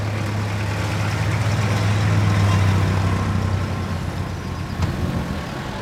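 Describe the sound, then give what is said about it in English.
A truck packed high with household goods and food labors up a short hill on the banks of the Mekong River, in the small town of Hu Wai Zai in Laos: a loud, continuous low engine rumble that holds steady and strains without letup, with no voices present. “A few miles downstream on the banks of the Mekong River, a truck packed high with household goods and food struggles up a short hill.”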